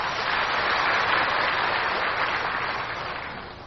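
A crowd claps warmly and steadily for several seconds, a dense, even patter of many hands that eases off slightly toward the end, with no voices over it.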